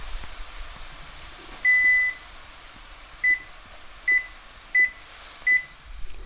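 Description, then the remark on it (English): A series of short electronic beeps from a kitchen timer being started while shrimp and vegetables cook on the stove: a double beep, then four single beeps spaced irregularly, clear over a faint hum. “All right, start the timer.”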